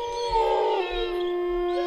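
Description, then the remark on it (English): A single long wolf howl, a steady sustained tone that holds its pitch with a slight bend, fairly loud with no talking over it. “And all you hear in response is the howl of a wolf.”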